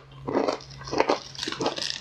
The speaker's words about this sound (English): There was a lot of chewing involved there. Well, they're really crunchy, so I don't want to cut my throat.